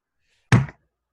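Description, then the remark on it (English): A single abrupt impact of a microphone being dropped: a sharp thud with a heavy low boom that cuts off within a quarter second, surrounded by silence. “You know, mic dropping never sounds like you want it to. It's just so abrupt and kind of sharp and not the thud that you want.”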